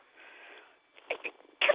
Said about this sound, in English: And this cat's driving me crazy, though.